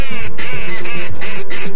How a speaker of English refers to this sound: Wood duck.